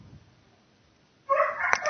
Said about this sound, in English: Speaking of dogs, that's 011101 in the background saying hello. Yes, she's got a binary number.